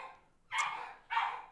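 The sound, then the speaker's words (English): Two sharp dog barks, one about a half-second after the start and another roughly a second later, moderately loud, with no talking over them. “Fucking dogs.”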